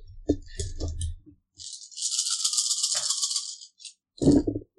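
Dice clatter and rattle in a cupped hand for a few seconds during a game, a bright, steady shaking, then a few clicks as they are tossed and come to rest; a low thump or grunt follows.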